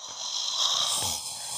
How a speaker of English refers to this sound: just like, that's in my ear. It's and like, I'm like, it feels to me like it's so auditory that it feels like you're in my ear breathing your hot ass air in my ear going.